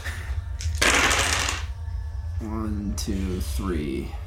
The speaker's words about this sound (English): So you're rolling 12 here, right? Yeah. To get 5 successes.